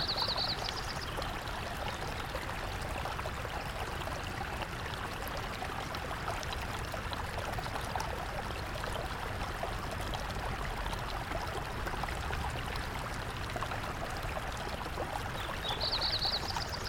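A small snowmelt stream in Big Meadows flows steadily, feeding into a bigger creek; its burbling, trickling water fills the whole stretch at an even level, with a faint high bird trill at the start and end.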